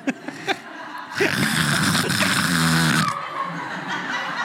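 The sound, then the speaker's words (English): A voice makes a harsh, growling snore-like rasp for about two seconds, loud, imitating a demonic snore, preceded by a few brief breathy sounds. “Wait, that sounds like you're snoring.”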